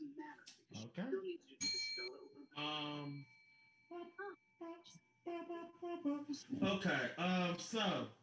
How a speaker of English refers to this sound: Okay, it's 10:05 right now. I'm gonna ring this bell.